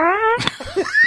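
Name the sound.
fart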